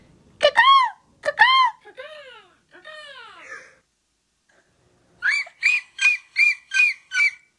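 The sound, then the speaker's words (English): A voice imitates a seagull: two sharp squawks, then two drawn-out, wavering cries, a short pause, and a quick run of six evenly spaced, high-pitched calls. “That was a really good seagull noise.”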